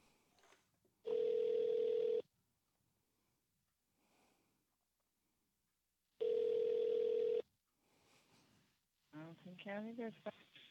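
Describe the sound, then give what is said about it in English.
A phone line rings twice, each long electronic burst separated by a few seconds of quiet, loud as if heard through the receiver, before a person starts speaking about a robbery at a Best Buy. “Yeah, I'm calling about the robbery at the Best Buy.”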